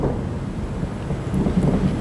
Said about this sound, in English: That was thunder.